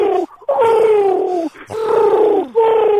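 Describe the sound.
A man's voice imitates a pigeon cooing in three drawn-out, throaty hoots, each sliding gently downward, close and fairly loud with short breaks between them.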